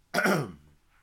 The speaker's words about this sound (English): I'm gonna be clearing my throat a lot because, because I'm fucked up, man. I'm just gonna say it. I'm fucked up. My throat is fucked up.